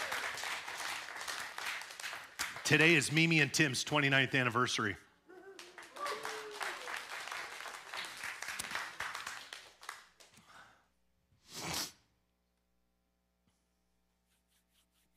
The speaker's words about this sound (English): Can we give her a round of applause?